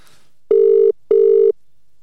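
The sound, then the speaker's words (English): Two steady electronic ringback tones of a phone call, each about 0.4 seconds long with a short pause between, heard clearly with no one talking. “You're going to ring him in your phone?”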